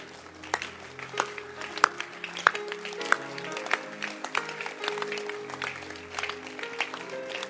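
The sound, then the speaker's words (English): An audience claps in a scattered, uneven burst for several seconds, sharp individual claps standing out over a steady patter, with a faint sustained tone underneath and no one speaking. “We didn't get here by having a mind to be clapped for, but rather let's listen to those who are clapping for us.”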